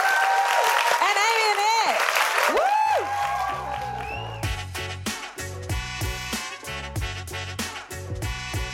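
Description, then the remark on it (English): Loud audience applause and cheering with whistles fills the opening seconds, then a thumping, rhythmic music track kicks in and carries on while the clapping fades beneath it. “let's join me in clapping the wonderful Sarah Pascoe, Rose Matafeo and Jack Rich”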